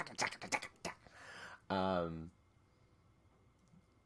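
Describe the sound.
A quick burst of clattering computer-keyboard typing, fairly loud, with sharp uneven keystrokes for about a second and a half, followed by a short voiced sound, then near silence.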